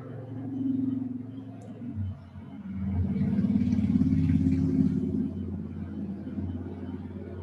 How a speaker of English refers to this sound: Even the sounds of cars or motorbikes can be pleasant.